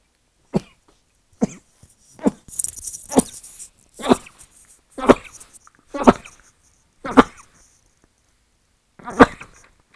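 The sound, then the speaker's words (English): Someone sneezes over and over, around nine sharp, explosive bursts spaced about a second apart, fairly loud, with no talking between them, set off by some dust. “No, I don't know why I sneeze on this thing. some dust going on.”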